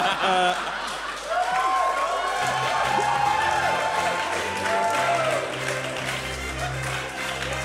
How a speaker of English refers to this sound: It's cheap. Your applause means nothing to me. It's just the sound of you remembering.